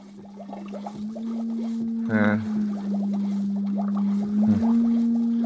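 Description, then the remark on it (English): An encephalograph machine running, with a steady low electronic hum beneath a stream of warbling bleeps and two brief, brighter buzzing bursts, fairly loud. “Encephalograph.”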